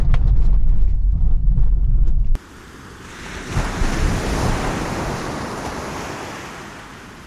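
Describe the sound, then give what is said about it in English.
A low car engine rumble cuts off abruptly, giving way to the broad, steady hiss of ocean surf on a beach, with a wave swelling louder and slowly washing back down. No one speaks. “All right, we made it down to the beach.”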